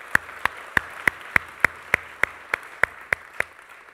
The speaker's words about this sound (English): I actually want to give a round of applause to all the volunteers who've been helping out with Pennsburg the last couple of weeks. You guys have done rock-solid job, so again, I just want to...